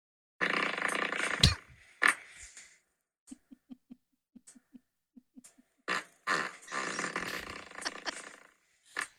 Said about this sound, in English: Man, she's got a flappy booty. It's just flapping in the wind. Really good stuff. So thanks a lot for the fart submission.